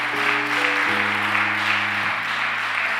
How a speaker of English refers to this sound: It is only God. So give him a thunderous hand clap.